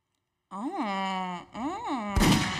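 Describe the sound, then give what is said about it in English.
A drawn-out vocal wail rising and falling in pitch twice, then a sudden loud gunshot sound effect bursts in at the end, sharp and noisy, cutting over the voice. “See, he got to add that sound effect. I was about to say, Tim, I need the sound effect. I had the gunshot ready for you.”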